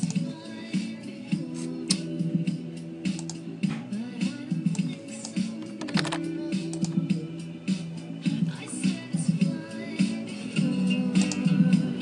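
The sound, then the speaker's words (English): Irregular clicking and tapping of a computer keyboard and mouse, fairly steady, with a low humming drone running underneath throughout. “And a clickety click. Shuffle, shuffle.”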